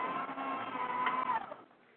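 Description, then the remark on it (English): A paper shredder runs with a steady, loud mechanical grinding whir and a faint high whine, then cuts off about two-thirds of the way through, leaving a quieter fading hum. No one speaks. “that was the paper shredder.”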